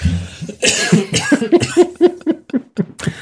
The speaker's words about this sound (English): Cough, man.